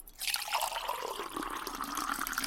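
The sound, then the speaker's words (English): Cold water pours steadily into a beaker, a continuous bright splashing stream that rises gently in pitch as the vessel fills, with no talking. “And that's cold.”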